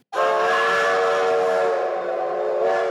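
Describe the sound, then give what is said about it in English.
A loud, sustained train whistle sound effect blasts steadily for nearly three seconds, its bright harmonic tone mixed with a breathy steam hiss, starting abruptly and holding without pause. “That's for you, Darwin Thompson truthers. Get on that train.”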